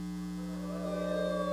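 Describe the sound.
Children's voices join in a rising, drawn-out wolf-like howl imitation that swells in the second half, over a steady low electrical hum.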